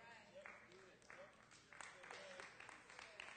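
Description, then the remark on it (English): A small group of five people claps by hand in an irregular, scattered patter of sharp slaps lasting a few seconds. Faint voices murmur and call out underneath. “Thank you for your hand clap.”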